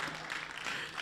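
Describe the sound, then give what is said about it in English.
A brief, thin patter of scattered hand claps from a crowd, uneven and lacking energy. “Oh, you are even lazy about clapping.”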